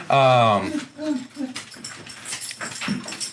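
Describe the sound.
A dog lets out a loud, drawn-out excited yelp up close, followed by a few shorter yips and whines, with people talking in the background.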